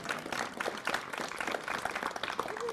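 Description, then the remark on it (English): An audience at the California Bible Conference applauds the committee, who have been asked to stand up. Many hands clap in a dense, steady patter that holds at a fairly even loudness throughout, with no talking over it. “You're welcome to applaud if you would like.”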